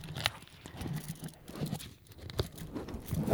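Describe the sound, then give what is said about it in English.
A Crunchy Bar's aluminum foil wrapper is torn and opened, giving bursts of crisp crinkling and tearing with sharp rustling spikes throughout, fairly steady and moderately loud, with no voices. “We're going to open up the Crunchy Bar now.”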